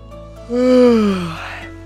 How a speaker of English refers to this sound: Oh, she lowers her head slightly, a heavy yawn escaping her throat.